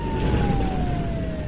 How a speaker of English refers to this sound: I stopped at the Shell station there in Hampton on US 278, fill up with gas, noticed the EMS and first responders coming through town with lights and siren on.